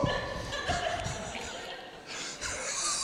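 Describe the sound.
A person gives a few short, barking yelps in imitation of a dog, loud, with chatter and background noise running throughout.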